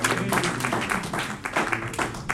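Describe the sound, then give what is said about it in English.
An audience at a Sunday church service claps together, giving the Lord a hand clap of praise: a sustained, dense burst of applause, many hands overlapping into a steady crackling wash with a few loud peaks, and faint voices underneath. “Give the Lord a hand clap of praise and you may be seated.”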